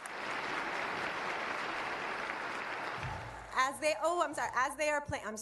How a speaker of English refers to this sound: Give me a clap for them.